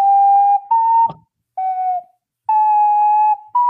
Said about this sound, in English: Is it blue plastic? No, it's ceramic. I like it's ceramic. Okay, it's ceramic. I like that it's a necklace. Yeah. The ocarina from Legend of Zelda Ocarina of Time. Yeah. Mm-hmm. And you can play that.